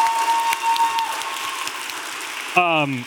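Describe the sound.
A live show audience at a 538 event applauds a senior elections analyst with steady, dense clapping that holds for a few seconds, and a voice cuts in near the end.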